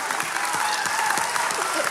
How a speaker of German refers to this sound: Der Applaus ist dir. Danke.